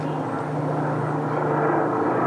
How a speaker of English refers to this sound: Another plane. How wonderful.